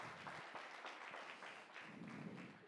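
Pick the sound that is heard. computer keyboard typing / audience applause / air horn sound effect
audience applause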